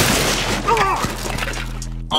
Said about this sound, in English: Brash on Bettis caused a snack table to shatter.